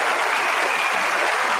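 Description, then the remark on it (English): Applause sound effect, applauding the men and women of the Coast Guard on National Coast Guard Day: a steady, dense wash of many hands clapping, loud and even throughout with no voices over it. “We can applaud every one of them.”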